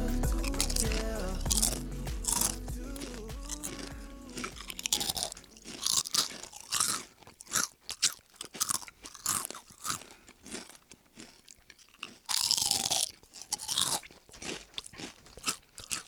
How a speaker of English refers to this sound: Hey guys, we're recording and we're gonna start with some chewing.